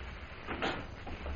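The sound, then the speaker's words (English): A woman opens a door, a brief scrape and rattle that peaks in the middle and then eases off, with no one talking. “Lil, get over there by the door so the woman won't see you when she opens it”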